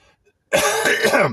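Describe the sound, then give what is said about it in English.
A single loud throat clearing with a rough, coughing edge, starting abruptly after a brief silence and rasping for nearly a second before trailing off. “Sorry, I'm just coughing a little bit.”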